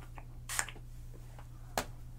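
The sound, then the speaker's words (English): Two quick hissing spritzes of heat protectant spray onto hair from a spray bottle, the first slightly longer than the second, separated by about a second over a low steady hum. “Use this heat spray on your hair.”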